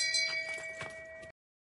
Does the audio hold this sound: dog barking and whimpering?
no